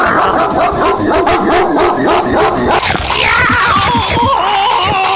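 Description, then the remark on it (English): A dog barks and snarls while biting down on a man with loud crunching, the noise dense and continuous, and the man's high, wavering scream rises over it in the second half. “The loud crunching sound rings out over the shiny man's screams. Hank is finally trying to bite the shiny man's nuts off.”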